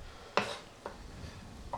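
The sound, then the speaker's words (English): Three sharp knife chops land on a cutting board as chunks of white meat chicken are cut, at an uneven pace, the first the loudest and the later two softer, over a faint background hum with no talking. “Wholesome chunks of white meat chicken going to work on the cutting board.”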